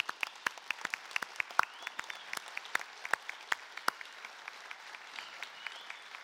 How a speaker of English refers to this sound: we're going to stand and applaud. Because whenever God does a great thing, we're going to give thanks. So would you please stand and let's rejoice in what God just has done.